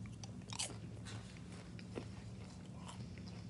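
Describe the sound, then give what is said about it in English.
Crisp, irregular crunches of someone chewing popcorn with M&Ms and chocolate drizzle, a few sharp bites standing out over a steady low hum, with no talking. “And then you get a kind of a sweet, salty taste from the popcorn.”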